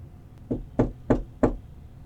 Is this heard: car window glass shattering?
no